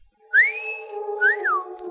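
A man's clear two-part wolf whistle, a rising sweep followed by a swooping rise-and-fall, loud, with a faint steady hum underneath.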